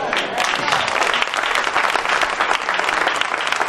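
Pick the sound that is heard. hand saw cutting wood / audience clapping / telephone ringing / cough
audience clapping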